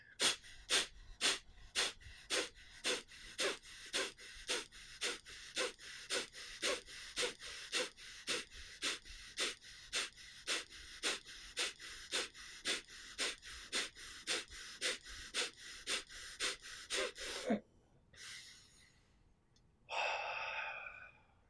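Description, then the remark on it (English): Rapid, forceful nasal exhalations, pushed out with the abdomen as a breathing exercise, pump out in a steady rhythm, roughly two per second for about seventeen seconds, loud, then give way to a couple of slower, longer breaths. “you use your abdomen, okay, to kind of like push the air out through your nose, and then you inhale through your nose too”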